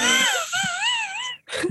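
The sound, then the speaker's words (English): A voice lets out a long, wavering, pitched moan imitating a death rattle, a slow hiss like squeezing the last bit of air out of a balloon, sliding up and down for over a second, then breaks off briefly before a short final groan. “Was that a death rattle? That was like the opposite of like a big bang. Yeah, a slow hiss.”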